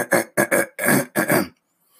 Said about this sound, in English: Let me clear my throat. I hope you don't mind.